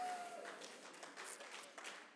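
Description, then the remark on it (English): A church audience breaks into steady applause during a sermon, many hands clapping at once in a continuous, moderately loud patter that carries on without pause. “why are you clapping?”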